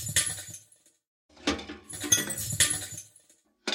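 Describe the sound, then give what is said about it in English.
A few glass impacts, each crash bright and splintery, with the hollow, metallic reverb of a trash can applied and hanging in the tail, separated by brief silences. “And then, of course, it's, as I mentioned, that's the reverb from a trash can applied to just another glass impact.”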